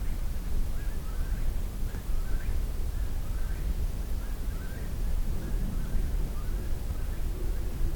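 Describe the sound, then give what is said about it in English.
Whippoorwills call faintly in the background, their short rising phrases repeating in a steady rhythm over a constant low, rumbling wash of outdoor noise. “And still some whippoorwills in the background.”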